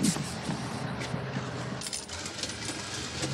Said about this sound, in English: Hold the bus. Hold the bus, please.